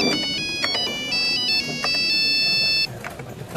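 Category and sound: signal or alarm, nokia mobile phone ringtone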